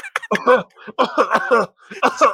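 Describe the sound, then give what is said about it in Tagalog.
A voice imitates a burst of coughing in three rough, choppy clusters, loud, with a raspy, rhythmic edge like a mock beatbox pattern, mimicking Marcelo H. Del Pilar beatboxing while coughing from tuberculosis. “Tapos nagbe-beatbox lang siya pero umuubo siya.”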